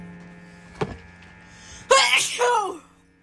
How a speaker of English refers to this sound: My bad, y'all. I'm sneezing in your ear.